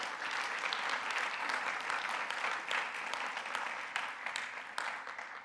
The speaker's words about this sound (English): I think you need to clap for them. Go ahead.